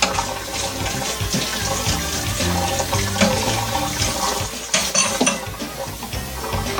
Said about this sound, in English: Pardon me. I just had to do that. Rinse off my spoon.